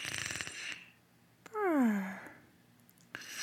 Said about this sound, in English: Wait, I hear a mysterious snore too. Papa. Oh, it's Blue.